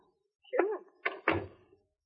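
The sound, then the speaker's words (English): A door swings shut with a short creak-like rustle, then two quick knocks of the latch and frame, the second a low solid thud, fairly quiet. “Close the door and stand still.”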